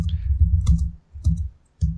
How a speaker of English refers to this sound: I think I'm hearing you typing.